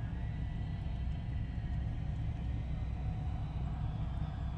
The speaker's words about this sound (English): There's a lot of cars here. It's a big group. 50? I heard. It's a big group.